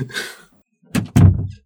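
A door swings open with a brief airy rush, then after a short pause shuts with two solid thumps, the second heavier and slightly ringing. No one speaks.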